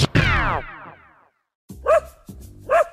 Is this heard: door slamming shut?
no